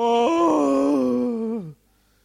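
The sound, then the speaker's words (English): A voice imitates a long, drawn-out yawn, rising in pitch, holding steady, then sliding downward and cutting off into silence. It is loud and alone, lasting under two seconds. “And another person, some people also yawn.”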